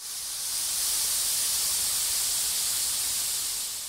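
A steady, loud hiss of steam pours out continuously for a few seconds, bright and airy with no breaks, swelling in slightly at the start and easing off at the end.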